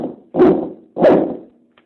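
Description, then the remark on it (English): Two abrupt, bark-like electronic swoops from a theremin, made by moving a hand quickly from the furthest point towards the instrument, each starting loud and quickly fading, low in pitch and spaced about half a second apart, with no talking. “If you you can get sound effects, you can take your hand from the furthest point and move it really quickly towards the thing, and it kind of sounds like a dog barking.”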